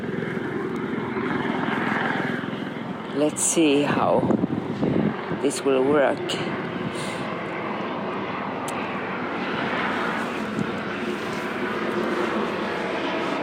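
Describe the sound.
A helicopter drones steadily overhead on a windy Sunday afternoon, a loud, continuous rotor and engine roar mixed with wind noise, while a person talks briefly over it.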